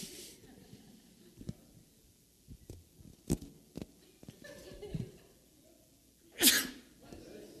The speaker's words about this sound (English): You didn't want me sneezing into the mic.